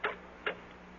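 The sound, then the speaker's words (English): Telephone dialing heard as two crisp clicks about half a second apart, placing a long-distance call to an Army base in Chicago, with nobody speaking and only a faint steady hum beneath them. “But first, I've got a phone call to make.”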